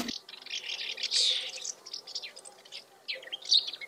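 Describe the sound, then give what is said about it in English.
Rapid, dry twittering chirps from house martins, small birds of the swallow family, a busy chattering run of calls with brief pauses, moderately loud, with no voices. “This week's bird is the house martin.”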